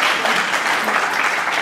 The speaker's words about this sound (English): And we have the best elected officials in my congressional district, I think, in the world. So give them a round of applause.